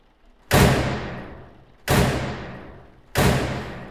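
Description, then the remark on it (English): Three heavy, booming knocks on a door by a husband arriving, at a slow, slightly uneven pace, each a loud thud that rings out and fades gradually before the next. No voices are heard. “Hark! My husband knocking portentously at the door.”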